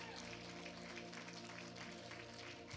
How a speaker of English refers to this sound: Clap if you're claiming that this morning.